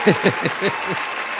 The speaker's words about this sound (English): Yeah, so, damn, bro, we need a whole round of applause, bro.